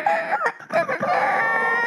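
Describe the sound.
A voice imitates a rooster's crow, a strained, warbling cry with a few breaks before a long sustained high-pitched note, loud, with no other talk.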